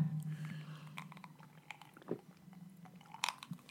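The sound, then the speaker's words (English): Wet slurping of a drink, with a few short sucking bursts and small mouth clicks over a steady low hum, no talking. “Here, let me slur my drink so you can hear. Well, let me have a sip too.”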